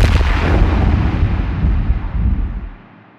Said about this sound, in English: I have an explosion.